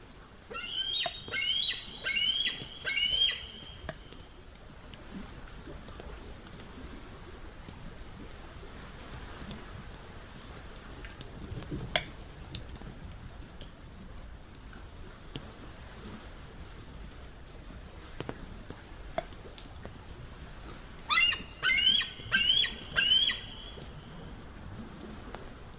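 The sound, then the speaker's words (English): A bald eagle's high, chattering cry rings out in two bursts of rapid piping notes, one at the start and another near the end, over a steady low outdoor hiss. “So you hear the cry of the bald eagle there.”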